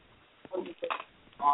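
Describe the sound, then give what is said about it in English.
A telephone line clicks open with a few brief, muffled bursts of narrow, tinny line noise, ending in a short tone-like beep, fairly quiet and with no one talking. “Speaking of family, let me go ahead and open up the phone line.”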